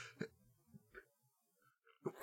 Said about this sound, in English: I like it took so long. Sneeze. Talk about a big buildup. You literally wound up for that one.